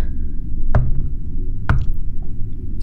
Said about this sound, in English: A second rap on the door snaps you from a daze.